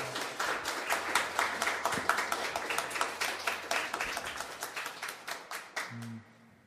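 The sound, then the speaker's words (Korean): A concert audience applauds steadily for several seconds after a live performance of a cover song, a dense patter of many hands clapping, then the clapping tapers off and fades out near the end. “여러분의 박수에서 진심이 느껴지는 것 같은데 감사합니다.”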